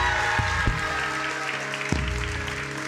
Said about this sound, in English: Come on, somebody give the Lord a clap and a shout in this place.